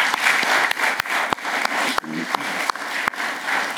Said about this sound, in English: In this congregation today, I'm sure our fathers and mothers, grandfathers and grandmothers, I think we should also give them a round of applause.